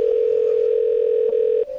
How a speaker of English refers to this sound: You're gonna hear this a lot on the show tonight, the ringing of phones. Just so you know.